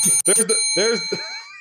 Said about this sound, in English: And that's the bell letting me know that we are officially out of time.